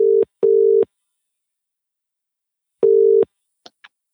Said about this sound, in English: So, yeah, you even hear the phone ringing as well. So you'll know when the show has officially started, because it starts ringing.